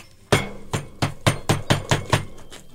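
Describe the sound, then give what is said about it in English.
A metal baking tin is banged repeatedly against a hard surface to knock a loaf of bread out of it, about eight sharp, clanging knocks in a fairly steady rhythm, with no voices. “You've got to bash it.”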